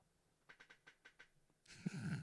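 Snoring: a quick run of six soft, breathy rasps, then a louder, rougher snort-like snore that buzzes for about half a second. No one speaks.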